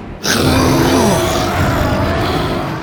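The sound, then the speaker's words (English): A T-Rex named Buck lowers his head and roars: a massive, sustained roar bursts in suddenly and holds loud for nearly three seconds, a deep guttural rumble with raspy, growling texture and a falling tonal moan underneath. “Buck lowered his head and roared.”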